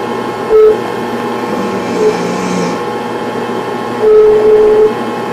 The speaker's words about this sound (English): As we sleep, the strange noises intensify. Later, the camera picks up this whistling sound.